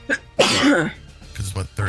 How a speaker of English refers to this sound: bless you.